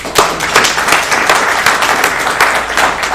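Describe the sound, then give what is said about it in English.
A seminar audience breaks into steady applause for the guest speaker from CKB Vienna, many hands clapping at once in a dense, sustained wash of sharp claps that holds fairly loud for the whole stretch without any talking. “If we can get a thunderous round of applause for our guest speaker today, from CKB Vienna,”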